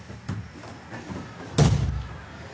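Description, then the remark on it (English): A door shuts with a solid, fairly loud thud partway through, after a couple of softer knocks and rustles of handling. “Just closing the door here.”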